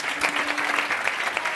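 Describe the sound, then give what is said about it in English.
An audience applauds steadily, many hands clapping in a dense, continuous patter at a fairly loud level, with no voices standing out. “Just another round of applause.”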